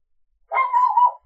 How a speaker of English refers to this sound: See, the dogs agree. I was going to say the dog disagrees and is barking at you, not with you.